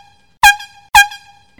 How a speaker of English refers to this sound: And then you hear an air horn.